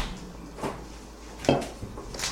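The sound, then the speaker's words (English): A beer being fetched from the fridge: a handful of soft clunks and glassy clinks, with a louder knock midway, over a low steady hum and no voices. “I hear something in the background. I was getting a beer.”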